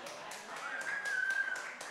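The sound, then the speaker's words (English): A group claps hands together in a steady, even rhythm, roughly four claps per second, moderately loud, with a faint murmur of voices underneath. “So, everyone, clapping every day.”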